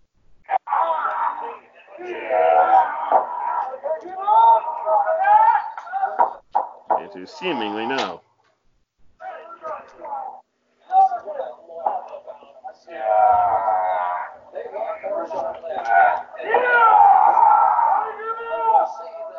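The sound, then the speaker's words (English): Loud, strained shouts and grunting yells from athletes during a match, coming in bursts with short gaps, raw, with sharp knocks and thuds mixed in. “There's a whole lot of yelling in this match.”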